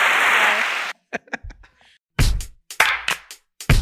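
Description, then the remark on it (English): A burst of noisy, applause-like hiss gives way to a string of sharp, loud hand claps in an uneven rhythm, some quick and light, others heavier and more resonant. “I'm just gonna clap you off.”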